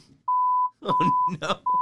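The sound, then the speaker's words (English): Steady, piercing electronic beeps at a single pitch repeat in close succession like Morse code SOS, loud and insistent, with people talking over the middle of the tones. “It's obnoxious beeping.”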